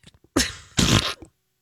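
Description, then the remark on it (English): In an office, a woman blows a wet, sputtering raspberry with her lips, mimicking a fart: two loud, raspy bursts back to back, the second buzzier and longer. No other voices. “Farted with her mouth.”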